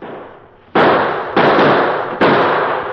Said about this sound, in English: Now, to continue our story, the addition of Kit Carson's musket to the Lone Ranger's well-placed gunfire soon had a telling effect.